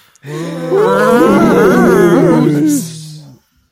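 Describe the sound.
A person gives one long, drawn-out vocal moo imitating a cow, a steady low droning tone with a wavering pitch lasting about three seconds, fairly loud.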